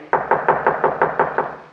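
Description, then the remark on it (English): Someone raps on a door with a quick, steady run of about seven fairly loud knocks, with no voices over them. “Well, I'll go ahead and knock at the door while you get your camera and supply case.”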